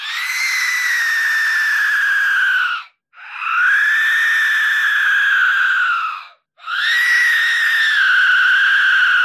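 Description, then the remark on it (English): A single Aztec death whistle blown in three long, harsh blasts, each about three seconds with brief pauses between. Its loud, rasping, scream-like shriek holds a steady high pitch and is heard alone. “This is the sound of a single Aztec death whistle being played by its lonesome.”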